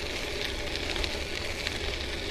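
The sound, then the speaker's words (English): Studded tires rolling on a wet road on a morning ride in rain at 42 degrees make a steady, loud spray-like hiss over a low rumble. It runs unbroken for the whole stretch with no voices and only slight flickers in the texture. “It makes the studded tires are that much more obnoxiously loud, aren't they?”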